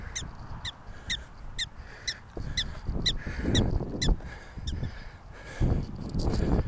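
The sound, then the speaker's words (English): A prairie dog calls in a steady series of sharp, high-pitched chirps, roughly two per second, over low rumbling background noise that swells and fades. “Oh, prayer dog, can you hear?”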